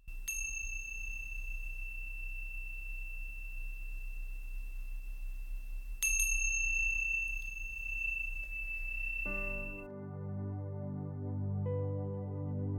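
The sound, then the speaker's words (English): A meditation chime is struck twice, about six seconds apart, each clear ring sustaining and slowly fading over a low background hum; soft melodic music begins near the end. “Wiggling your fingers and wiggling your toes when you hear the sounds of the chime.”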